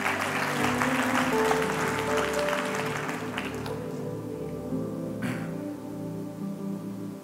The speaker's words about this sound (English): Come on, clap for God. You've seen a miracle.